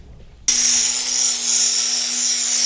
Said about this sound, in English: Because when you cut into these shells... Oh, it's warm. We have a little bit of water. We can spritz it on there to cool it off.